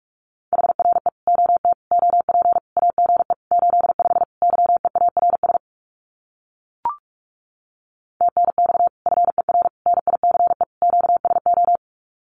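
Rapid Morse code at about 45 words per minute sending common amateur radio QSO phrases, a steady mid-pitched tone keyed in dense bursts, pausing for over two seconds around a single click before the fast dits and dahs resume.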